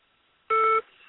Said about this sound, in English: Damn, who's calling my phone?